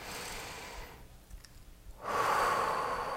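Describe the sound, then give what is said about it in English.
A slow, deep breath taken as part of a guided breathing exercise: a long airy inhale, a brief pause, then a louder, fuller exhale, with no talking. “I encourage you to take some nice deep breaths.”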